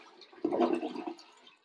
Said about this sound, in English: We have our first toilet flush on the Draft Dudes podcast.